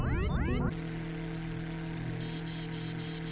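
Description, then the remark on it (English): Electrical static interference during a power transfer drawing energy from the sun: a loud burst of warbling, sweeping electronic tones cuts off sharply, leaving a steady buzzing hum with crackly noise that continues at a lower level. “Error. Power source interference.”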